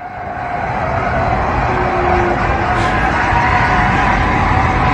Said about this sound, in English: Tires screeching. There's dust flying up behind the dump truck. I do not understand how this driver did not know, because not only is he T-boning the car, the tail end of the car is scraping against the guardrail.